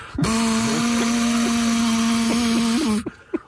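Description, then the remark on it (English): A leaf blower roars with a steady, high motor whine and rushing air for about three seconds, then abruptly shuts off, leaving a couple of faint clicks. “Might as well get a pet leaf blower.”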